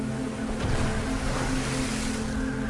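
A steady, loud roar of rough ocean water and surf in a storm fills the whole stretch, with a low droning hum underneath, like being out on stormy waves in a boat.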